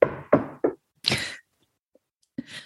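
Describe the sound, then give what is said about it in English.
Three firm knocks on a door in quick, even succession, loud, followed by a short burst of rushing noise and one more thud. “Okay, so then they're all standing on the stairs and there's a knock on the door.”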